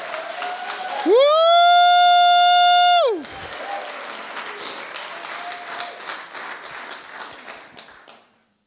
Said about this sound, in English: You know, if that was for me, what will it be like to give it to the King of Kings, the Lord of Glory? Shall we give him all the applause that he deserves?